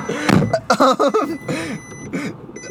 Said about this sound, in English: Why is your car just making noises now?